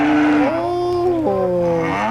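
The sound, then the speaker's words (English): A Jersey cow moos in one long, loud, drawn-out call in a cattle barn at a fair, its tone stepping down in pitch a couple of times, over a low steady rumble of barn background noise. “Look at this lovely little Jersey cow.”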